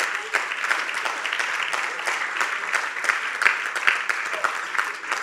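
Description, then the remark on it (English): A crowd claps steadily for several seconds, a dense, even patter of many hands with a few sharper claps standing out, with no voices over it. “You can clap, free, free.”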